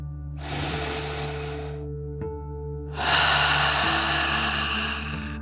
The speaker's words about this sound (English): We'll start by taking a deep dragon breath together. You'll breathe in through your nose, filling up your lungs, and then out through your mouth, pretending you are breathing fire like a dragon. Ready? Deep breath. In and out.